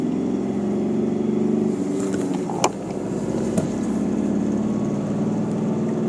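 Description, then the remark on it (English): A sprint racing vehicle's engine drones loudly and steadily for several seconds as it goes past on a road with a fair bit of traffic, its buzzing harmonic tone holding fairly even, with a couple of brief sharp clicks partway through and no voices. “I'll wait for this sprint to go past.”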